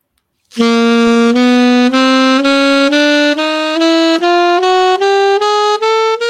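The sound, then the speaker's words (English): A one-octave contra D-flat chromatic scale played on an instrument: about a dozen loud, sustained, reedy notes rising in even half-step increments, each note held briefly with a short break before the next. “That's a one octave contra D flat chromatic scale.”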